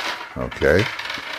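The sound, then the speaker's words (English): Small hard story dice are rolled, tumbling and rattling across a surface in a quick, bright clatter of overlapping clicks, lasting about a second before settling. “So I'm going to take these dice, these story dice, and I'm going to roll them and see what happens and see what I can make up.”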